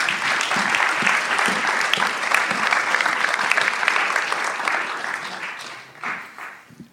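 A crowd claps steadily in a dense, sustained round of applause that holds loud for several seconds, then thins out and fades toward the end.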